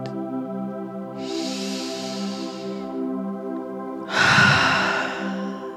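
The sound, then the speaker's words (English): Two slow, deep breaths during a guided breathing exercise drift over a steady, humming musical drone: a soft airy one early on, then a louder, fuller exhale near the end, unhurried. “Just imagining it shooting out your fingertips on that exhale, bringing it in, circulating, and out.”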